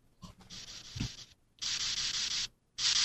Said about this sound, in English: Anyway, and it will just continuously get louder and louder. What is that? It's just white noise. It's designed to be... an awesome ring. It's designed to be something that no one else would use.